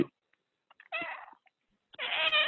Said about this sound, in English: My cat Larry wants to say hi.